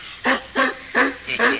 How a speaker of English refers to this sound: All right. Quiet, Butch. What a wonderful dog. Is Butch his name? Yeah. All right, boy. Yeah, that's his name. He doesn't seem to like my sister and me. No, he's wary of strangers.